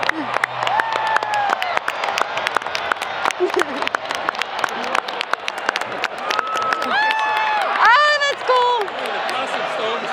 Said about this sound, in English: This is cool. Round of applause.